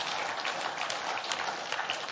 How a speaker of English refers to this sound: I need our men to clap. Thank you.